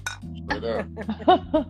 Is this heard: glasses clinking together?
yes